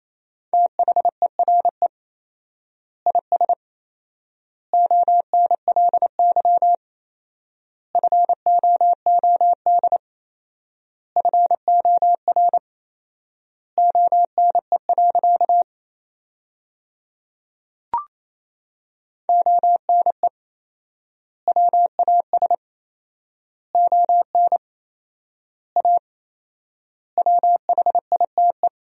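Morse code beeps at a brisk 28 words per minute: a steady mid-pitched tone keyed in rapid dots and dashes, sending sentences built from the 300 most common words, with four-times word spacing giving long pauses between words, with no voices.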